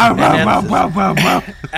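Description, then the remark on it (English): A person's voice imitates a dog barking, giving a quick string of about five loud, rhythmic woofs that end abruptly. “I didn't know I had such a good dog noise.”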